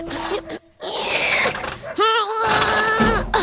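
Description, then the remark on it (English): Dogs on the street bark and howl together: loud, overlapping yelps and cries, with one drawn-out wavering howl rising in pitch near the end, the din continuing steadily throughout. “Listen, on the street, you can hear the return of roo-roo-roos and woof-woof-woofs.”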